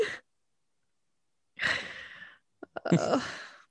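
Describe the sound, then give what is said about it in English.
A flat-faced female dog snores loudly, with raspy, breathy snorts: a short one, a pause, then two longer rattling breaths. No one speaks. “Sorry to anyone who might be able to hear my dog snoring.”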